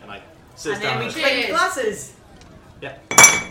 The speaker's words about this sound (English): And then we clink glasses.